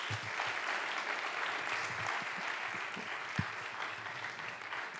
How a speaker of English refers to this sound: Thank you so much for a round of applause.